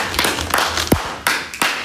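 Brief, scattered applause in a live studio acknowledging a guest: a handful of sharp, irregular claps over a low background hum, with a short sliding tone partway through. No one speaks.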